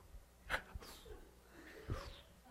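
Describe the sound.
A voice imitates the heavy, ragged breathing of running in a race: a few sharp, noisy huffs and gasps at an uneven pace, fairly quiet, with no words spoken.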